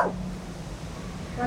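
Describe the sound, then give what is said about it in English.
A person imitates a dog's bark with two short vocal bursts, one at the start and one at the end, separated by a quiet, hissy pause. The voice is fairly soft. “A dog. That's right.”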